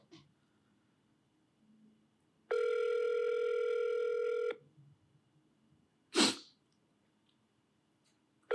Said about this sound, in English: There we go. It's ringing. Can you guys hear the ring? Yeah, I can hear it.